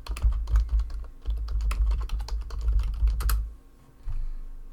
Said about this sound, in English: New listeners, there's a lot of that mechanical keyboard typing. That's kind of the background drop of our lives.